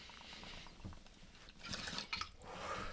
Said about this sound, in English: This bong's a little less harsh now. That the carbonation's completely... Oh, I think there's still some bubbles in it, but that was pretty awful the first couple hits.